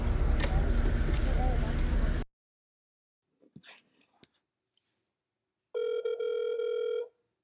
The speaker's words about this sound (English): You just said, well, hell, because my phone cut you off. Can you say it again?